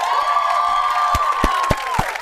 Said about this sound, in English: So let's give a round of applause to people like Mindy Kaling.